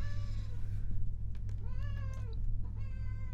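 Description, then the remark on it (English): A cat meows insistently, three drawn-out, wavering calls in quick succession, clear over a steady low background hum, with no one speaking. “We have the loudest cat in the world, if you can't tell.”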